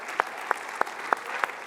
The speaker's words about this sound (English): Would you clap for them? Amazing men of God.